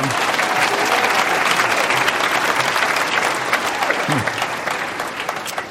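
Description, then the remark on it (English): A crowd at a Climate One event at the Commonwealth Club applauds Yvon Chouinard for his upcoming 78th birthday, a dense, even patter of many hands clapping at a loud, constant level for several seconds, with faint voices mixed in and a slight fade at the end. “There's nothing to clap about being 78.”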